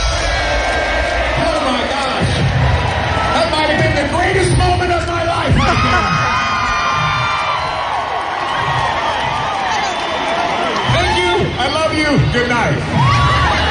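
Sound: stadium concert crowd cheering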